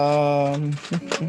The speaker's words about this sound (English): The door opens, he says, right? No, I heard dice as if he's rolling about to roll damage. That's just a sound effect for the door opening.